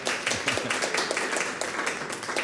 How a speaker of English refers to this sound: Thank you. Big round of applause. Thank you.